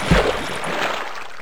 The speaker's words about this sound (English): Oh God. What's with the whole splashy noises? There's a lot of splashing going on.